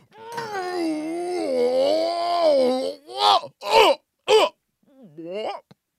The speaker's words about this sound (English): Both of those burps were so big